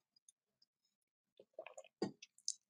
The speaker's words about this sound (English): in the morning, sometimes I sip my kombucha. So that's what I was just doing.